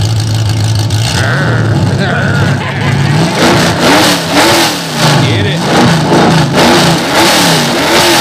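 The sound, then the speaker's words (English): A loud race car engine roars to life and revs repeatedly, its pitch climbing and dropping in sharp bursts, while a voice briefly calls out over the noise. “why don't you fire this mother up, son? Crank it. Fire this mother up.”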